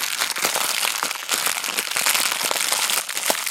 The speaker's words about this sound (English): And opening up the beans. They're in a plastic bag.